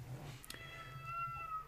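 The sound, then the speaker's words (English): A female cat lets out a drawn-out, whiny meow that rises and holds, fairly quiet, preceded by a couple of soft clicks over a low background hum. “Oh, the cat's here. Can you hear her?”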